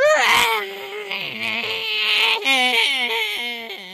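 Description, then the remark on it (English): A voice imitates the hissing, horrible song of tentacles sinking back into the water: a warbling, high-pitched wail that slides up and down in pitch, strained and breathy, sustained loudly for about four seconds with no words. “The tentacles make their hissing horrible song as they sink back into the water.”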